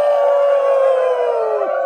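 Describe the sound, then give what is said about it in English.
A person's voice imitates a wolf howling: one loud, steady, drawn-out howl that slides gently downward and drops off sharply at the end, heard alone. “Wolf. Howl! Howl! Howl! Yip, yip, yip, yip, yip, yip, yip, yip, yip, yip.”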